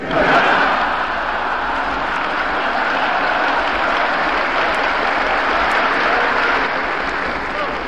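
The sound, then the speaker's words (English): Sustained, dense applause from a large congressional audience during a speech to Congress, steady and loud for the full stretch with no voices standing out, a broad wash of clapping. “Lots of applause, and he introduced a lot of people in that speech.”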